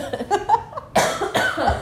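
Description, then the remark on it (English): A fairly loud coughing fit, several harsh bursts in quick succession with a throaty, raspy edge, heard on its own without talking. “My cough.”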